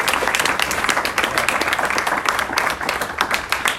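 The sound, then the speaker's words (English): A room full of people applauding steadily as a woman speaker returns to her chair, a dense patter of many hands clapping at once, sustained and fairly loud throughout with no talking over it. “Let's clap for her as she goes back to the chair.”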